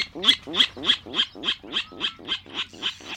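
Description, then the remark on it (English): A Virginia rail gives its grunting call, a steady series of about ten harsh, pig-like notes evenly spaced, with no voices over it. “Nearly one quarter of U.S. birds, such as this Virginia rail, rely on freshwater wetlands.”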